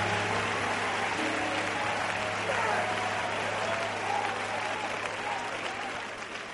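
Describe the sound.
An audience claps their hands in sustained, dense applause at the preacher's call to clap, with faint voices and cheering mixed underneath, fading slightly toward the end.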